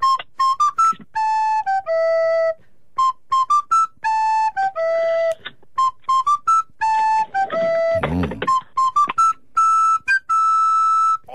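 A pop song melody whistled alone for a radio caller to guess, in short repeated phrases of bright, clear high notes at a steady, fairly loud level, with a brief breathy burst near the end.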